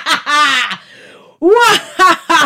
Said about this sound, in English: Whoever thought you're the one that's shouting right now?